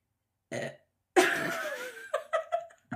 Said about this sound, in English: You should post a reel of all your burps for your podcast. Be like my this has never happened. And be like, my acid reflux. When I'm recording by myself, this doesn't happen.